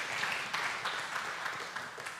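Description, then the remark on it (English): A church audience claps together in a steady, dense wash of applause, with sharper bursts of claps rising every half second or so over a continuous bright patter. “You already have the victory, and that is worth an amen and a clap and a good church.”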